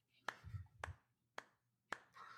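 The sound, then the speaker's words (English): A brief, sparse round of applause for everybody at the end of a discussion: four sharp, crisp claps spaced roughly half a second apart, with a faint low murmur between them. “And so, yeah, I'd like to give a little round of applause for everybody.”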